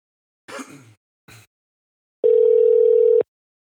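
A phone call ringing out: after a couple of short muffled noises, a single steady electronic ring tone sounds clearly for about a second, then cuts off into silence.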